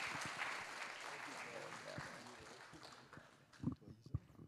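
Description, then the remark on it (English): A church audience applauds to welcome a guest speaker to the stage, in a dense, steady patter of many hands clapping, loud at first and gradually thinning out, with a few sharper claps near the end. “Can you join me in just welcome, big round of applause.”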